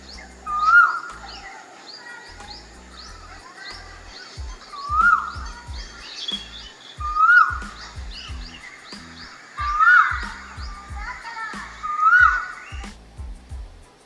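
An Asian koel calls five times in the evening in a steady series, each note sweeping upward, clear, while other small birds chirp and twitter softly in the background.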